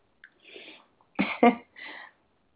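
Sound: sneeze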